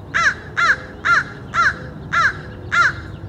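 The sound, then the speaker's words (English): Six harsh crow caws in a steady, evenly spaced series, loud, from crows in trees and on telephone poles in a neighborhood early in the morning, over a low murmur of background noise with no one speaking. “The garbage trucks come by early in the morning, and then in comes the sound of crows squawking in the trees and perching on telephone poles nearby.”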